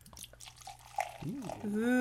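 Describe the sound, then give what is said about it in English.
Dark beer glugs and splashes into a glass in a short pour with a few drips, then a voice breaks in with a drawn-out exclamation. “And the pour.”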